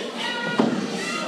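A single heavy crash as a wrestler is chokeslammed through a plywood board, a short sharp impact midway rising briefly above a steady, dense wash of crowd noise.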